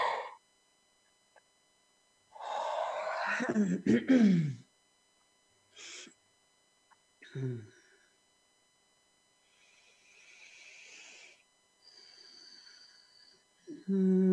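A person lets out a long, drawn-out yawn, its voice sliding downward in pitch, followed by a few short breathy sounds and faint hissing noise.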